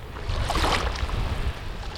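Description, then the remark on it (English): Floodwater covering thousands of acres of farmland near Corcoran in Kings County, in the Central Valley, laps and sloshes gently in a steady, low wash, with a soft swell of splashing midway through and a faint breezy hiss underneath, no voices. “Instead, beneath the waves gently lapping in front of him are thousands of acres of farmland.”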